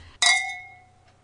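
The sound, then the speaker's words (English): A single bright clink of wine glasses touching in a toast, with a clear ringing tone that decays over about a second. No voices are heard. “Shall we jump into it? Let's! Cheers. Cheers.”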